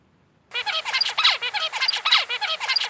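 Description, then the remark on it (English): A recording of a juvenile songbird raised in a quiet room, singing after a brief silence: a rapid, steady string of buzzy, harmonically rich syllables, many copied from its tutor, with a motif repeating roughly every second. The song is fairly loud, with no talking over it. “This is an example of a juvenile from that quiet room.”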